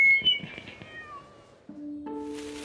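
Several cats meow in quick succession, their cries sliding downward and overlapping, followed by a couple of longer, sustained yowls. Clear, with no talking.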